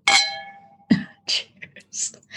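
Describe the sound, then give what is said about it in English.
Wine glasses clink once in a toast made over a computer, a bright, high ring that hangs and fades for nearly a second, followed by a few short, soft breathy sounds. “I have to be careful doing that over the computer.”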